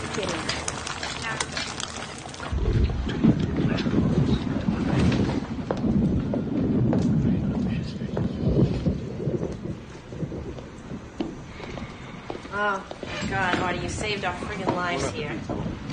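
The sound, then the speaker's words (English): A thunderstorm with wind in a scene from The Sopranos, a storm that knocked out power while people huddled together at Artie Bucco's restaurant: heavy low rumbling and a steady hiss of rain and gusts throughout, with people's voices talking over the storm toward the end. “This, one of the many great scenes in The Sopranos, when there was a storm that knocked out power and they huddled together at Artie Bucco's restaurant to share a meal with the family.”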